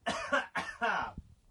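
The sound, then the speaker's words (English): A short fit of coughing: three harsh, voiced coughs in quick succession, fairly loud, ending with a small throaty grunt. “Cough.”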